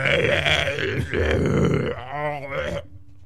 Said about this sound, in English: That's what happens when you drink beer. You cough when you smoke. I burp when I drink. Cause and effect.